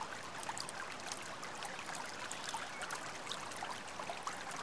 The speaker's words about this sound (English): The brook runs long and narrow. A footpath runs perfectly parallel to its shallow bends and curves.